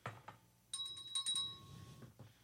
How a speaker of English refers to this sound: Just for the record, the bell says ring for wine.